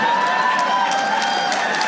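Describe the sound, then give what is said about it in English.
Audience applause, a steady, dense wash of clapping that holds at an even level for about two seconds, with a few cheers and crowd voices mixed in. “Don't clap for that.”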